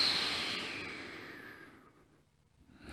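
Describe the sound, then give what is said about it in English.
A long, deep preparatory exhale during a guided breathing exercise, a soft airy rush that gradually fades into near silence, followed by the start of a fresh inhale rising at the end. “Let's just have one preparatory breath.”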